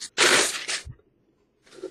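Handling of a small wooden dice box: a loud scraping rustle, a soft low knock as it settles, a brief pause, then quieter fiddling noises.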